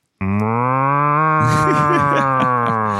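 A single long, loud cow moo with a steady low drone that holds for nearly three seconds, sounding close and clear, with some rustling in the latter half.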